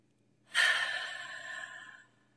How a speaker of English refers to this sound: And before we start this interview, I'm going to ask you first to take a deep breath.